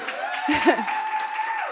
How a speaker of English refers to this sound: Now the way, yes, let's clap for that.